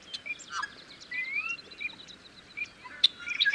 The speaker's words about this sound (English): The first thing that stands out are the loud, harsh and almost strained calls and songs of the yellow-headed blackbirds in front of us. See them sitting on top of the cattails? There. They sound similar to the red-winged blackbirds down there.